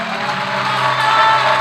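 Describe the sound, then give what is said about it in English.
An audience clapping for Jesus in a dense, steady wash of applause, loud and continuous with no individual claps standing out, mixed with a low murmur of cheering voices. “Come on, clap for Jesus.”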